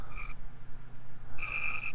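A frog croaks twice, a short trilling call followed after a pause by a longer, louder one, against a steady low background rumble.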